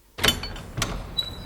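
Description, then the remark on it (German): The front door of a villa opens: a sharp latch click, a second knock-like thump a moment later, then a brief high-pitched squeak of the hinge, with no one speaking. “Als er an der Tür der Villa klingelte, beobachteten ihn Gabi und Karl, die sich hinter einem Busch versteckt hatten, sodass Herr von Picheritzky sie nicht sehen konnte, als er die Tür öffnete.”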